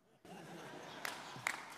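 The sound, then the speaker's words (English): An audience breaks into a steady wash of clapping that starts abruptly and holds at a fairly quiet level, with a couple of sharper claps standing out near the end. “You're clapping the second house, right?”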